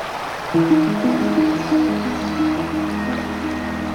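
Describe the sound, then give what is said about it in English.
Steady rushing water from a fast-flowing, shallow river fills the scene, a continuous hiss with a low humming tone joining in after the first half second. “River is a generous term for what this is at this point, but it is fast flowing today.”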